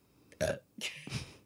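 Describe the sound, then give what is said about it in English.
A short burp with a gurgly, broken texture, sounding in two or three quick bursts across about a second, loud against a quiet background with no talking. “You just burped and now you have to pee?”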